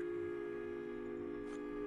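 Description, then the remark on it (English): A tea kettle whistles in a steady, sustained tone with layered harmonics, holding at an even pitch and fairly loud throughout the short stretch, with no talking over it. “Tea kettle.”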